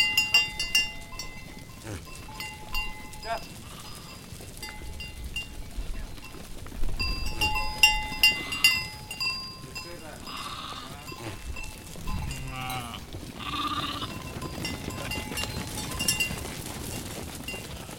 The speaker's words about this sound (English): After visiting with the sheep at the corral,